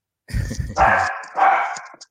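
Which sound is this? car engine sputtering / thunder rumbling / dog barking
dog barking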